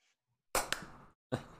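Sharp, bright hand claps: two quick ones in succession that ring out and fade, then a third after a short pause. The claps stand alone, with no talking.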